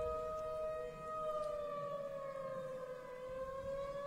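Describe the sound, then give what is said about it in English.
Civil defense sirens wail steadily, their long sustained tones slowly sliding downward in pitch over a low rumbling background, with no voices present. “And you hear nothing but the sound of the sirens.”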